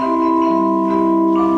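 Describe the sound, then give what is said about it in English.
Celeste notes ring out together as a bright, sustained chord, shifting slightly near the end, with no voices. “Cathedral chimes, tuned sleigh bells, celeste,”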